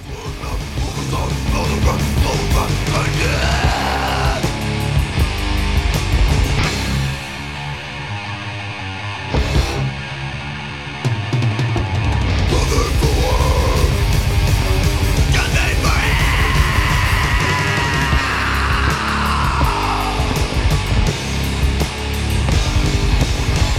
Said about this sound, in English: And it's a really cool, super non-technical death metal.